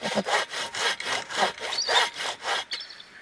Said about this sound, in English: These stumps have been, they're from trees that have been dead for 100 years or more in some cases. And on that first draw of the saw and the wood chips fly, and all of a sudden you can just smell the resin.